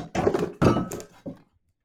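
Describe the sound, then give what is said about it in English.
A cat crashes into a computer: a loud thump, a second heavy thud with a rattling clatter, then one smaller knock before everything goes quiet. “full-on Superman dive into the computer.”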